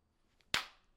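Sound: hand clapping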